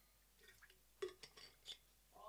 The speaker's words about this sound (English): Just getting a sip of water.